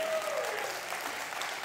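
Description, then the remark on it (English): An audience at Freedom Church claps together in praise to the Lord, a dense, sustained wash of many hands applauding at steady volume with no gaps, filling the whole short stretch. “Let's give a hand clap of praise to the Lord.”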